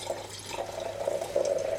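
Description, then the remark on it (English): Dark wine pours steadily into a glass for about two seconds, a continuous trickling splash with a faint ringing tone that edges upward as it fills. No one speaks. “So it's pouring nice, not that deep actually.”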